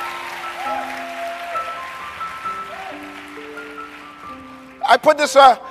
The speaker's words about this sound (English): If you've been through something, clap your hands. Thank God you made it through.